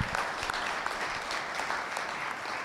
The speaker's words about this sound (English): Let's give God a big round of applause. Come on.